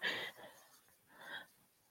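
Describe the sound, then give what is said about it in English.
Two short, raspy throat-clearing coughs, the first a little stronger, separated by about a second of quiet breathy air, with no talking. “Cough it out.”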